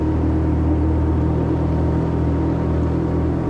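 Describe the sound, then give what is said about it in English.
The motor of an insanely huge remote control boat coming this way on the water drones steadily, a low buzzing hum with layered harmonic tones and a rumbling undertone, holding an even loudness throughout with no voices. “Hey, whoever's controlling that insanely huge remote control boat, knock it off!”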